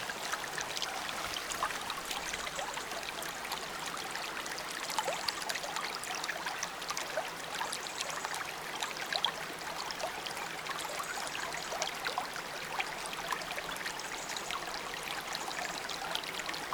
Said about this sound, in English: I've moved away from the fairy pool. The water from the fairy pool is running down into this stream, and I'm going to come close and I'm going to give you a minute with this beautiful sound.